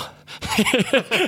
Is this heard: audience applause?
no